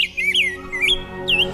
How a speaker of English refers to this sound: beautiful sound, beautiful bird, the rose-breasted grosbeak. Today's featured feathered friend here on Talkin' Birds.